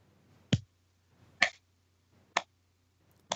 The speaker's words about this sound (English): Those claps are far too inconsistent.